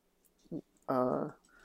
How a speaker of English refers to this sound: The dogs are being called. They hear the door and they just like need to go and check it out.